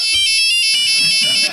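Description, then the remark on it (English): A cell phone ringtone plays loudly and continuously, a bright, pulsing electronic melody with sharp high tones, while faint low murmuring sits underneath in the second half. “I'll never forget the first time that we kissed and somebody's cell phone went off in the elevator.”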